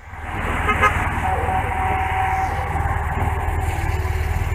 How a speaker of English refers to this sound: Let's get some body footage of the cars racing by.